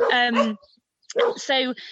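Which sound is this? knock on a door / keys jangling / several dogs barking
several dogs barking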